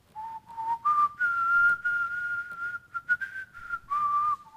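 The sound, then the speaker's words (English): A missionary whistles the slow hymn tune "I Have Decided to Follow Jesus", holding long, steady notes with a few short rising phrases between them. The whistling is clear, with no talking. “The others, some of the missionaries were wondering how they're doing, so they started whistling.”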